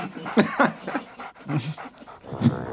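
A few short, husky dog barks mixed with quick breathy panting, fairly loud, coming in uneven bursts over a couple of seconds with no talking.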